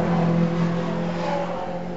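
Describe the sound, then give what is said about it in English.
A loud car engine roars steadily at high revs for a couple of seconds, its droning pitch holding almost level with a slight drift, as a racing car speeds across the line at the end of a lap, running on three old tyres and one part-worn tyre. “He's crossing the line in a few seconds, so we can see what he's done this time.”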